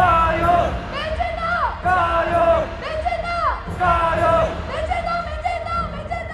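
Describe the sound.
A large crowd at a rally of a Taiwan identity and sovereignty movement chants loudly in unison, repeating a short shouted phrase in steady rhythmic bursts, including the cheer 'jia you' and chants that Taiwan is the world's Taiwan rather than China's Taiwan, with cheering and yelling mixed in.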